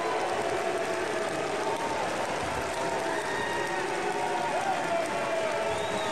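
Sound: sparse clapping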